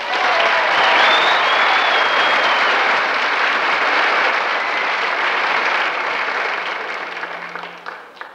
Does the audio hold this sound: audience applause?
yes